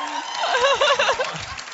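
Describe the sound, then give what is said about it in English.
A crowd applauding and cheering, dense clapping noise with excited whoops and shouts rising and falling through it, loud and sustained for under two seconds. “All right, applause.”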